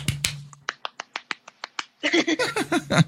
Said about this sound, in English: I can do a golf clap.